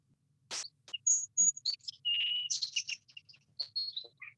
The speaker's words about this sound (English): Is that a bird?